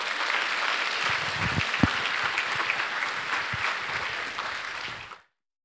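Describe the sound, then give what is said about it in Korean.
A crowd at a church worship service claps steadily and warmly for about five seconds to welcome a pastor as he comes forward to speak, a dense continuous applause that stops abruptly, with no talking over it. “우리 나오실 때 크게 박수함으로 환영하겠습니다.”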